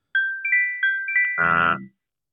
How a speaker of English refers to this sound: So I'm like, okay. So is that your alarm going off?